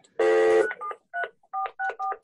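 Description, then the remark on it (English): A phone's electronic tones as an incoming call arrives during a Zoom call and is declined: a short buzzy ringing burst, then a rapid run of about five dual-tone dialing beeps, clear with no voices. “Dolores is calling me right now. So I'm declining on her.”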